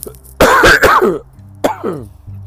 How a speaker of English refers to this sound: I'm sorry guys for coughing. I know the mic is like, this mic is like right next to my my mouth. Oh, but you know why I'm coughing? Because I'm walking, I'm pacing.